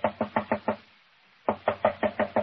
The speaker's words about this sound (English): She must be out. Door's locked. Knock again, if you don't mind. She may be asleep.